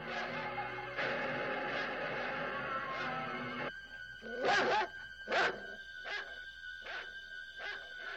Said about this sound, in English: I'm about to be ripped apart by the family dog.